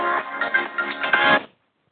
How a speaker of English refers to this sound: I just put my phone back on to get into the group. And somebody just rang me because I had it on airplane mode before.